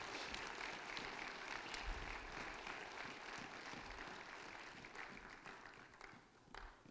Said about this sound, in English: One more time, let's clap our hands.